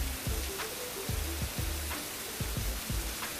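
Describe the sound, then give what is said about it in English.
A steady, dense hiss of heavy rain fills the scene, with low, repeating bass-like thumps pulsing underneath at a regular rhythm. No one speaks. “it's just raining harder and harder right now.”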